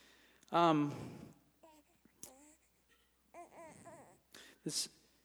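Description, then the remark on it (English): A wide-awake baby boy babbles, opening with a loud, high squeal, then trailing into softer coos and short burbling syllables, with a sharp little yelp near the end. “This is my new baby. Say hi today. He's wide awake for you.”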